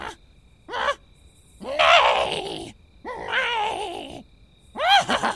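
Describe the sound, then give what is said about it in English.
A man's voice imitates a horse whinny in several loud, wavering bursts that rise and fall in pitch, separated by brief pauses, with breathy grunting edges. “The wild man let out a whinny.”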